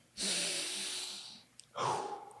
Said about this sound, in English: Here we go. Getting his breathing under control. Yeah. Calm down, Tanjiro.